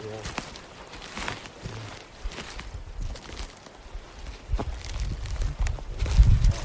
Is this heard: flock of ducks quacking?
no